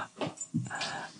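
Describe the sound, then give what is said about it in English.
A dog whimpers in a recording studio, letting out a few short, high-pitched whines and whimpering cries in quick succession, with no one talking. “brought his dog, even though I said not to bring your dog, but you did it.”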